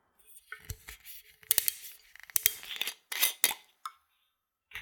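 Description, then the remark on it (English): A screw cap is twisted off a glass bottle of Beefeater gin, giving a series of short, scratchy clicks and rasps in uneven bursts, with a few sharper ticks near the end and no talking. “So now let's go ahead and open this bottle up.”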